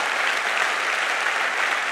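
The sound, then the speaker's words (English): An audience claps hands in steady, dense applause for the statement that the Holy Spirit is the Almighty God, a continuous bright crackle of many overlapping claps at a fairly even, loud level throughout. “You can clap hands a little louder for that.”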